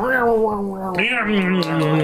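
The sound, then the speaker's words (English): A person's voice mimics a territorial feral cat growling while eating outside, a continuous wavering snarl of about two seconds with rising and falling pitch and no actual words. “You're like one of those territorial feral cats that are eating outside.”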